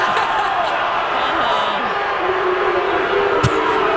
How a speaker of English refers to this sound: There's our audience. They're booing us.